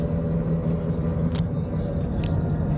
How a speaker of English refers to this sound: But I'm in a car now, so... not riding around the skateboard anymore, duh.